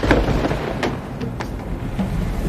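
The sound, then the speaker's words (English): A storm of falling trash pours down, with scattered sharp thuds and clatters landing over a constant, loud thunder-like rumble and rushing noise; no one speaks. “any chance this is a scheduled trash storm?”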